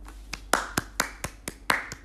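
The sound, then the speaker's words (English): A quick run of about nine sharp hand claps in a steady, brisk rhythm, some landing louder than others, with no talking over them. “Girl, here's a clap.”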